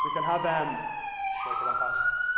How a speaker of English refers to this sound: You can have this mix going on of big things happening, like whatever that siren is responding to